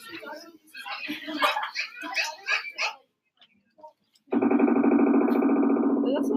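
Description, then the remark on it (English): A pileated woodpecker drums in a single loud, rapid roll lasting about two seconds, so fast it blurs into a buzzy rattle. It follows voices and a short pause. “So that is a distinct drum.”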